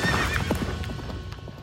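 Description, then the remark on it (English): A horse being ridden in the mountains of Turkey whinnies at the start, then hooves clip-clop in a steady, unhurried rhythm of distinct strikes, with no voices present. “The year after, she learned how to horse ride while exploring the faraway mountains of Turkey.”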